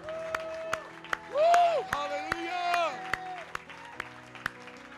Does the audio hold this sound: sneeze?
no